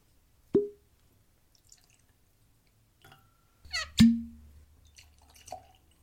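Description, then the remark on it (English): Rye whiskeys are poured into glasses for a side-by-side tasting: a sharp glass clink, a quiet pause, then a brief gurgling splash with another resonant clink and a few soft drips, with no talking. “I'm interested in seeing what these taste like side by side, so let's get these poured and jump right in.”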